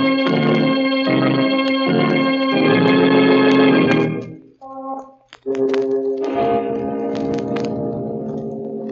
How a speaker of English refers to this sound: And it continues to whisper until it is drowned by a clock striking 12 for... Murder! At midnight.